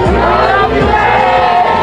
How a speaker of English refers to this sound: The group released balloons into the sky in his honor before shouting in unison.